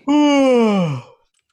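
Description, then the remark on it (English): A single drawn-out voiced imitation of a yawn, loud, starting high and sliding slowly downward in pitch for about a second before trailing off into silence. “7 o'clock hits, and Camros is yawning.”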